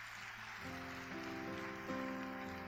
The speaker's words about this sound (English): Can we clap for her? Please come and take a gift. Let's clap for her.